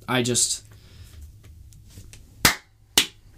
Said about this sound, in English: Just a slow clap. I'm just, oh my god.